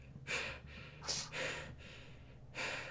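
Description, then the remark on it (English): Heavy, ragged gasping for breath from a man who has just crashed through a tower window at full speed and combat-rolled to the center: a few sharp airy inhales and exhales in uneven rhythm with brief pauses between, over a low background hum; no one speaks. “At full speed, just barreling towards the tower, at which point, before anyone can react, he crashes right through the window and just kind of combat rolls into the center, gasping.”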